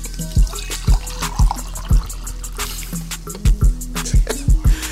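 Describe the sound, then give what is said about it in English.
Raspberry wine glugs from a bottle into a glass, a woman pouring her fourth drink of the night, in a quick, uneven series of hollow gulps with splashy trickling between them, fairly loud, with no voices. “is pouring out like her fourth drink for the night.”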